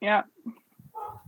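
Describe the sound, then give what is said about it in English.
Dogs bark in a short, excited burst as a UPS delivery driver shows up: one loud bark up front, then a few quieter yelps and grumbling noises trailing off over about a second. “I don't know if you just heard my dogs go nuts because the UPS guy showed up.”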